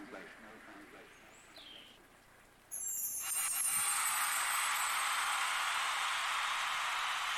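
Rain falls in a steady, dense hiss that starts abruptly a few seconds in and continues evenly, preceded by a quieter stretch with faint chirping.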